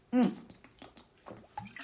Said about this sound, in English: Excuse me, I'm just going to have some glass of water.